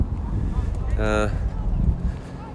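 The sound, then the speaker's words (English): Steady low rumbling wind buffets the microphone outdoors on a bitterly cold, windy day, loud and gusty, with a brief high tonal squeak about halfway through. “It's bitterly cold today and windy.”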